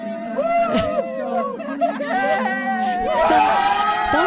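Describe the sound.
A lively party crowd cheering and whooping, many voices overlapping in loud, excited shouts and chatter that build steadily over a few seconds.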